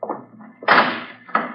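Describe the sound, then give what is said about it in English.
A heavy vault door swings shut with a low scraping rumble, then a loud, broad clunk as it closes, followed by a second solid thud. No one speaks. “I should like to close the door.”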